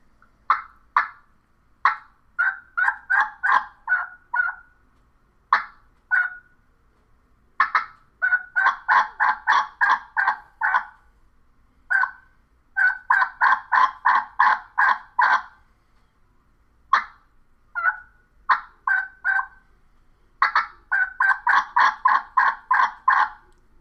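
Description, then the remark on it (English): A turkey call runs through varied sequences of sharp single clucks and rhythmic strings of raspy yelps, the rasp brought in and out, fairly loud, with brief pauses between series and no talking. “You got clucks, yelps. I'm taking the rasp in. I'm bringing the rasp out.”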